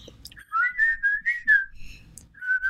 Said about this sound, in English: Yes, and the last time it just was you whistling.